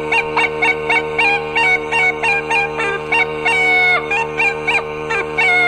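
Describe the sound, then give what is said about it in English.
An old goose gander honks over and over in a quick, steady rhythm, loud, with a constant low droning hum running underneath the whole time. “The old gander.”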